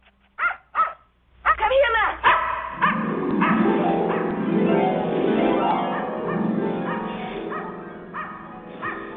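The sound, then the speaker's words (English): A few sharp barks open, then a group of dogs barks and howls together in pitched tones that rise and fall like a familiar song, loud and continuous to the end. “Meanwhile, in another dimension, a group of dogs get together to sing a familiar song.”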